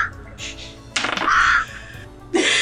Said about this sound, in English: I cast Minor Illusion to make it look like there are crows that just start cawing at him.